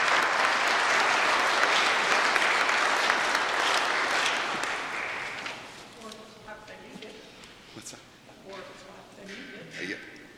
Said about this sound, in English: Let us give her a round of applause.